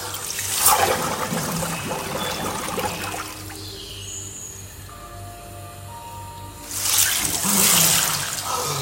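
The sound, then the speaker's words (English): Water sloshes and splashes loudly as a head is dunked into an ice bath, a gym chest freezer filled with ice and water, with a quieter dripping stretch in between before a second vigorous surge of splashing as it comes back up. “Right, there's my head dunk.”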